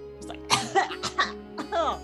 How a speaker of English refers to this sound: You hear some very annoyed coughing from the captain, who's just gotten a face full of smoke in a closed, non-ventilated room.